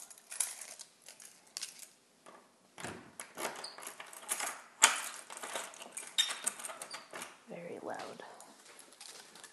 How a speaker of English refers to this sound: Alright. Here we go. Lock the door just in case.